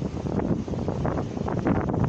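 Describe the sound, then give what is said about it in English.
Ocean waves wash onto a sandy beach under the moon in a steady, fairly loud roar, with wind buffeting the microphone and no voices over the surf. “I'm looking at, the moon on the waves, the sand, the stuff that literally is in front of me, I'm not just making a visual for y'all like a pretend one, but I'm trying to show y'all the realness of the waves. Listen to it.”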